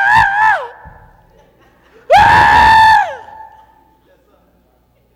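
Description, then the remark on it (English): A voice lets out two loud, drawn-out cries, a short one and then a longer wailing one about a second later, imitating people screaming in grief, with a faint echo trailing after. “Then he came to the ruler of synagogue, the house of the ruler of synagogue, from verse 38 now, saw a tumult and those who wept and wailed loudly. So you got to know, they screaming and carrying on.”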